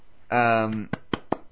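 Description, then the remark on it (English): A voice holds a short sung note, then three sharp hand claps follow in a quick, slightly uneven rhythm, each one a crisp, bright smack. “Yep, that was not the right amount of claps, but that's fine.”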